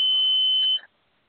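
A single sustained high-pitched electronic beep, steady and fairly loud, lasting under a second before cutting off into near silence.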